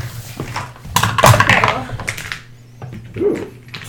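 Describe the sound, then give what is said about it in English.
Large dice clatter across a tabletop as players of a tabletop role-playing game roll a perception check, a quick burst of hard clicks and knocks lasting about a second, with faint voices murmuring around them. “Fucking big ass dice.”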